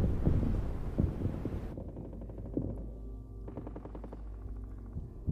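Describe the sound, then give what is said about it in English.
Deep, muffled booms thud now and then over a steady low rumble, like explosions going off far away, with a faint rapid rattle in between and no voices. “You still hear the explosions in the distance.”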